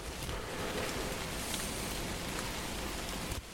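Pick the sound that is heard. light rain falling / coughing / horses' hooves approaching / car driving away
light rain falling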